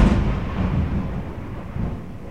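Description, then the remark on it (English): A deep, rumbling roll of thunder from a storm dominates, loud at first, then settling into a sustained low growl with a slight swell near the end. No voices are present. “Man, that is a hell of a storm.”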